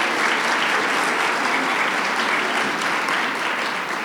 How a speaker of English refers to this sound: She's got it. Clap for her.